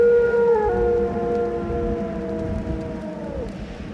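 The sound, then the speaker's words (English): A long, wailing howl of a distant dog at night, carried in through an open window on the night wind, holds a steady mournful tone for several seconds before trailing off over a low, constant background rumble. “Staley Fleming did not, or he would perhaps not have sprung to his feet as the night wind brought in through the open window the long wailing howl of a distant dog.”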